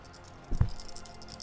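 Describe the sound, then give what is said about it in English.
A large handful of dice rattles quietly, a faint stream of small clicks throughout, broken midway by one dull, muffled thump. No one speaks. “Oh, that sounds like a lot of dice he's holding there, brother.”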